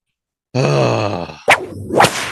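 A low, drawn-out groaning tone gives way to two sharp whip cracks about half a second apart, each a bright snapping lash with a brief swishing tail.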